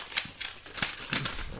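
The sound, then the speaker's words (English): A mail envelope is torn open in a series of sharp, crisp paper rips, roughly four quick bursts of rustling and tearing with brief pauses between, heard alone without any talking. “I'm just opening my mail right now.”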